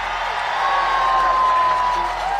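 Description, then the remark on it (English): A large rally crowd in Philadelphia cheers as RFK announces he is running for president as an independent, a continuous, loud roar that holds steady for the whole stretch, with a thin, high whistling tone running through the noise. “At first, RFK runs as a Democratic candidate, but in October, he announces in front of this big crowd in Philadelphia that he's running as an independent.”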